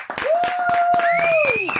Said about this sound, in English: He's getting slow clapped.